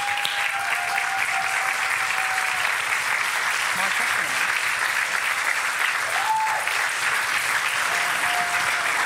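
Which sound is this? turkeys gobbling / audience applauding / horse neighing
audience applauding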